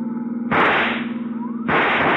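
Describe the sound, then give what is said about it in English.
Two loud rifle shots crack out about a second apart, fired from a pursuing car at a fleeing car's tire, each with a sharp onset and a ringing tail, over a steady low engine drone. “See if you can use that rifle, Dollar.”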